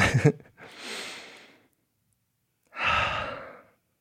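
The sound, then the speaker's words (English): A slow, deliberate deep breath: a long drawn inhale, a pause of silence, then a full audible exhale, fairly loud, with no talking. “So to begin, I thought it'd be nice, maybe we just take a nice long breath.”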